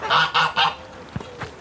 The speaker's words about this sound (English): And in here, oh, and the geese. They are, right on cue.